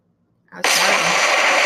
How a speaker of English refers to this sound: That's how dynamic it was. That was an explosion for those of you at home.